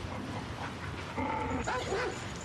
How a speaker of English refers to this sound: just to make it even more menacing, there's an Alsatian chained up outside who barks and rears at her. Someone obviously chained that dog up in the yard, which implies the barn and its farm buildings are inhabited.